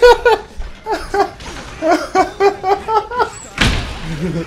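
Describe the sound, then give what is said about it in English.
Several people laugh in bursts, then a single loud door slam cuts in with a sharp bang, followed by a low murmur of voices. “I wish there was like a door close enough so I could slam it right now.”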